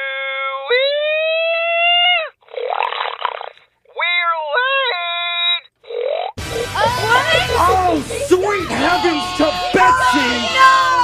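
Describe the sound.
A contest-winning human hog call from the annual hog calling contest held over the weekend in Madison, Wisconsin: loud, drawn-out hollers with swooping pitch and breathy, snorting bursts in between, then a busier stretch of wavering, rising-and-falling calls over a noisy background.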